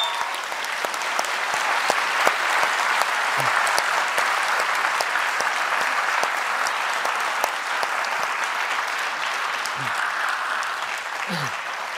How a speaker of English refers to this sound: For his opening address, please give the applause he deserves for Senator Bernie Sanders.